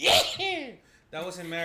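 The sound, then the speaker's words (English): A single sharp, breathy sneeze bursts out, followed right away by a person talking in an animated voice. “Bless you.”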